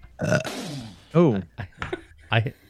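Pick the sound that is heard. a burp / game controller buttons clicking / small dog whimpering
a burp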